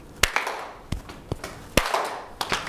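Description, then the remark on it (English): A short rhythmic body percussion pattern of clap, tap, tap, clap, slap, slap: sharp hand claps mixed with lighter taps and slaps, about seven hits in an uneven beat, fairly loud, with no talking. “Okay, and then we go clap, tap, tap, clap, slap, slap.”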